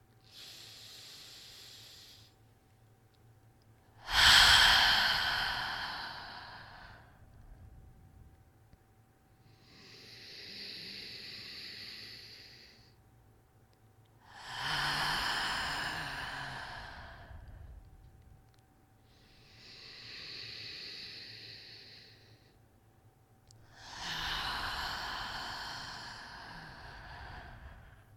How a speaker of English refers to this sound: Let's go for 5 slow, deep breaths in through the nose, out through the mouth, just to get into the energy, okay? Breathe in.